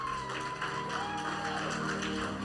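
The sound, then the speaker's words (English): The New Vision church audience claps hands to welcome a visiting family, in steady, dense applause that holds at an even level throughout, with a faint thin tone and murmuring voices mixed in underneath. “give them a clap of hands. Come on, New Vision, you can do better than that.”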